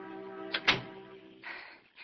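An apartment door swings shut, a quick knock followed by a heavier thud as it latches, over a steady low hum, with some soft shuffling noise afterward.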